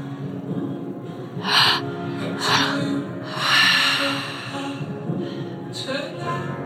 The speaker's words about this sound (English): Any adjustments, and stay with the breath. Mouths are still open, we're still breathing.